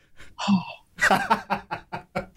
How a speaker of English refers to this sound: Sorry, that was me sniffing the underwear that you didn't send me.